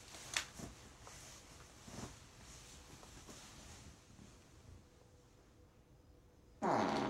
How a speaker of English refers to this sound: It's fake. Yo, where's the real farts, man?